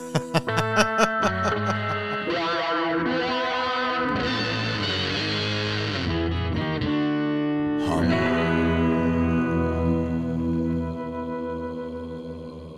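A low, sustained hummed tone processed through effects pedals, heavily distorted and drenched in echo and chorus-like warble, swelling and shifting pitch in a steady, droning wash with no words.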